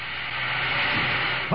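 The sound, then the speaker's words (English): A steady, faint hiss of escaping steam or compressed air runs without a break in an empty penthouse apartment, soft and airy, ending with a brief low thump. “I hear a faint hissing sound. That's either steam or compressed air, but where's it coming from?”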